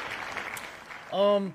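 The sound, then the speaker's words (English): A brief patter of clapping, a quick round of applause for sponsor Reamer Construction, fairly soft and steady, lasts about a second before a voice cuts in at the end. “Give you guys a quick little round of applause.”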